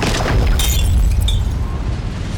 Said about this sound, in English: A concussive blast of wind shattered the trident and rocked the Tide Goddess back.